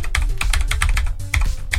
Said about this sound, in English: Oh, that takes me back. Yeah, I got myself a mechanical keyboard because it sounds so nice to type on.